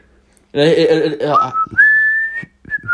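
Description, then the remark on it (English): A person whistles: after a short voiced sound, a clear whistled note slides upward into a long, steady high pitch, then a brief pause and a final shorter note. “I just, like, whistled so much around it that she started doing it as well”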